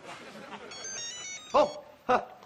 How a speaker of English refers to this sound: It is the phone again. Phones ring, don't they?